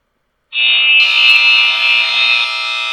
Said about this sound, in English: Hold on, back up. I gotta buzz you out on the last one.